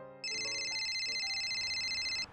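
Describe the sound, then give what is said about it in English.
A phone line ringing on an outgoing call to a lorry driver: one steady, bright electronic trill lasting about two seconds, clear, with no voices. “Let's ring him now. It's ringing.”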